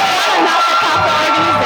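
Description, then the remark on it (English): A crowd screams and cheers loudly and continuously, a dense wash of excited voices with high-pitched shrieks sustained throughout the short stretch. “Oh, they screaming.”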